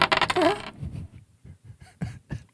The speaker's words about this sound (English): roll those dice.